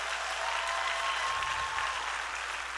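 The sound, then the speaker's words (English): An audience applauds steadily for their pastor on Pastor's Appreciation Day and his upcoming 60th birthday, many hands clapping together in a dense, sustained wash of sound that holds at an even level throughout. “Can we give him a hand clap for that?”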